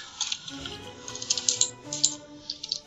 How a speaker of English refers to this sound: Sorry if the keyboard is clacking like crazy.